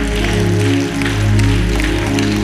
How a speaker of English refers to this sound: Clap your hands to the King of Heaven.